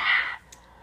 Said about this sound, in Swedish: Nu måste jag hosta. Host. Jag har fått hosta.